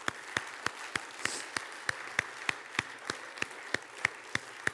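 A church audience claps together for the risen Jesus in a steady, evenly spaced rhythm, each sharp clap standing out over a soft wash of scattered applause, with no voices speaking.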